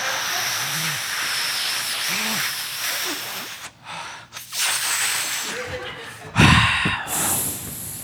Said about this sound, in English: Rod Serling takes a long drag of a cigarette before putting it out on the floor with his shoe.